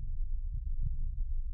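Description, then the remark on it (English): A deep, muffled heartbeat thrums steadily in the ears, its low pulses throbbing heavy beneath a constant rumbling drone, with no voices present. “You can hear your heartbeat thrumming in your ears.”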